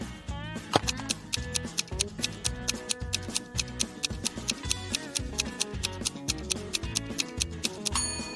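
A clock-style countdown ticks in a fast, steady rhythm, its crisp clicks laid over a looping, tense musical bed with low bass notes. No one speaks.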